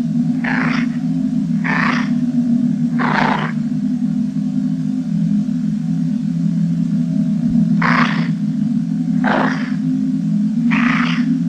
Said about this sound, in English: And in the distance, something emerges from the sand, hacking and wheezing, and it's a Dalek, or a model of a Dalek. It sounds like a sick puppy or something.